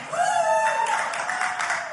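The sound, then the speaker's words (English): A church audience cheers during a sermon, led by one long, high 'woooo' that rises slightly and holds for about a second, over a steady wash of shouting and whooping that carries on loudly to the end. “There's the woo-woo crowd”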